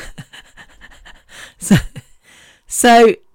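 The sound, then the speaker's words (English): Heavy panting from a person whose lungs are irreversibly scarred: a run of quick, rhythmic breaths, then a couple of harsher bursts, ending in a loud, strained voiced gasp. “yeah, I sometimes feel like I don't see sometimes further than the panting, because the panting in my lungs is because of the scarring in my lungs.”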